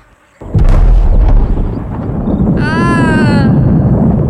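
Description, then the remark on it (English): A sudden, heavy sonic boom from an airplane breaking the sound barrier cracks in and rolls into a long, deep rumble that keeps booming, with a brief high whining tone rising over it midway. “You know what those are? Sonic booms. They happen all the time.”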